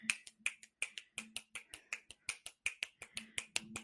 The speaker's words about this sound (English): I wish I had a button that was clapping right now because, I can do the snapping.